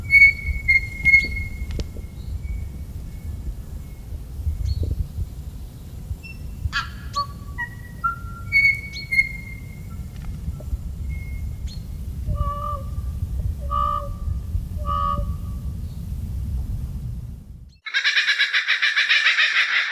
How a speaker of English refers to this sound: Oh, yeah. They're so different. Let's just listen to the New Zealand bird now.